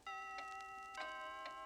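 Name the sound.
clock striking twelve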